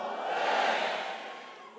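A church crowd at Holy Hill in Ghana screams together on a preacher's call, a dense, roaring wall of voices that swells to a peak and then eases slightly, held for under two seconds with no single voice standing out.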